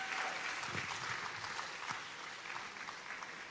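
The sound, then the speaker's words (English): A crowd claps steadily for the speaker's friends, a dense wash of many hands with no pause, holding fairly loud and even throughout before easing only slightly toward the end. “Put your hands together for my friends.”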